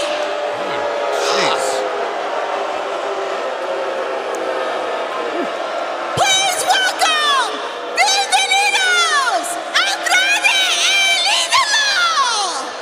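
A large crowd at a wrestling event roars continuously as a wrestler is introduced, then erupts around the midpoint into louder, shrill screams and cheers with rising whoops rippling through the dense, echoing noise.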